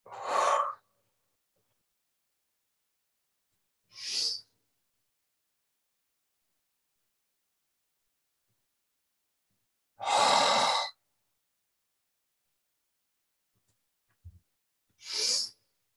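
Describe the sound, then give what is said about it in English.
Slow, deep breaths during a guided breathing exercise, a few long inhales and exhales spaced by quiet pauses, clearly audible with no talking. “I'll give us a whole round of breathing to find that part.”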